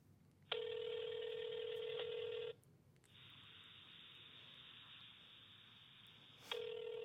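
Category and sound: signal or alarm, phone ringing on speakerphone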